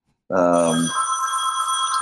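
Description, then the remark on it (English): A phone in a house rings loudly, a steady, bright electronic tone that holds for nearly two seconds, with a short burst of voice-like sound at its start. “sorry about all the phones going off here.”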